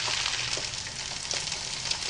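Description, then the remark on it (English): Eggs sizzle steadily in a hot frying pan, a dense hiss sprinkled with small crackles and pops, heard alone with no talking. “Looks like a frying pan and some eggs to me.”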